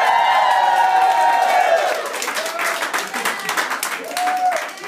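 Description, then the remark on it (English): A live studio audience on the University of Oregon campus in Eugene, Oregon, cheers and applauds loudly during a broadcast, with dense clapping, high whoops and shouts, and a few sustained voices rising above the crowd noise before it tapers off slightly. “Yes, they love it here. All right, great crowd, lots of energy.”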